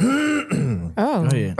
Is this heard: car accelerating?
no